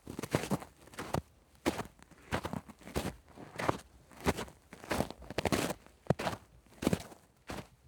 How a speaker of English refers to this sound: If you guessed footsteps walking through the snow, you're right.